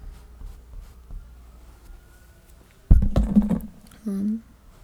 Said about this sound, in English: There's some sirens going on in the background. Just thought that might be interesting for anyone.